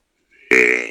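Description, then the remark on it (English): A deer grunt call is blown once: a faint lead-in, then an abrupt loud, buzzy, burp-like grunt with a low rasping tone that holds for about half a second. “Let me hit this grunt call out here.”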